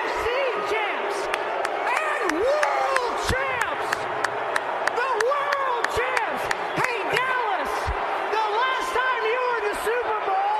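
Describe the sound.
A loud crowd boos a Philadelphia Eagles kicker, shouting together in a dense, continuous roar of overlapping voices, punctuated by sharp claps and bangs throughout.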